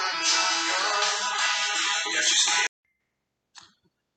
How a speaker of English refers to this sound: Sorry about that, a phone call.